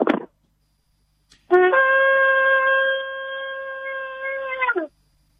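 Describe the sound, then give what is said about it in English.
A single long shofar blast from Rabbi Kirt Schneider's office, heard over a phone line: a steady, buzzy horn tone held for about three seconds, slightly swelling, then cutting off abruptly. A short noisy burst comes before it. “Okay, my friend, we're about to go off the air, but let's give a last shofar blow here.”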